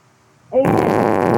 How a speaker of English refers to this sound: Did you hear that? I farted, and that is me releasing the energy, so the curse is activated.